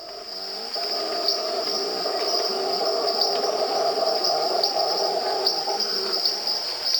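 A dense tropical night chorus recorded in the early 1990s in Corcovado National Park, Costa Rica: a steady high insect drone, scattered quick peeping calls from little tree frogs (peepers), and a low, rumbling howler monkey roar sustained underneath throughout.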